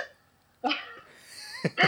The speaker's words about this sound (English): There seems to be a sort of delayed feedback where I'm barking at myself.